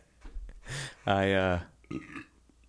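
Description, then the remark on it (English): A single loud, drawn-out burp rumbles for about half a second, preceded by a short throaty noise and followed by faint breathy sounds. “So I can hide my burps from the podcast, but not from the Instagram Live.”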